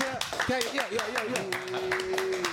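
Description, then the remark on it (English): A group claps hands in a steady, even rhythm, about seven sharp claps, while a voice sings and then holds a long sustained note over them. “Can I get some live claps?”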